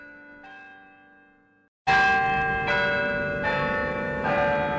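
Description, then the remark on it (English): The historic church bells of Albany City Hall ring out loudly, a faint chime fading before a strong series of rich, resonant strikes that overlap and sustain with long ringing decay. “The historic bells of Albany City Hall return us to Albany Street”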